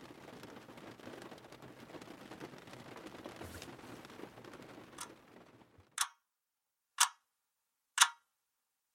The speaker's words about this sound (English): It's just, wow, sitting in a car and listening to the rain, and it was gorgeous. So I'll let you listen to the rain for a sec.